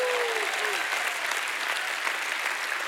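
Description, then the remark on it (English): A church audience claps in praise to God in a dense, steady wash of applause that holds at an even loudness throughout, with a faint rising vocal cry heard briefly at the start. “If you've ever had a dark night and joy showed up in your morning and God restored you, you ought to give God a hand clap and a shout of praise.”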